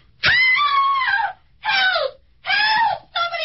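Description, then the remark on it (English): A woman screams four times in quick succession, each cry loud, high and strained, with short gasping pauses between them and no other voices. “What was she screaming about, mister?”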